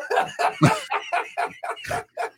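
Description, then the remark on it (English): A trombone played badly by an adult man, blurting out about eight short, uneven honks in quick succession, loud, with a rough, squawking tone and no voices. “That noise was made by a trombone.”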